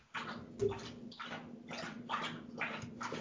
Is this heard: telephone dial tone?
no